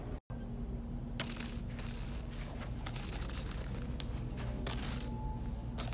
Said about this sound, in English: This sound is represented by a seashell when you put it to your ear. The sound you make and how we did it was we blew into a water bottle that had a little bit of water in it.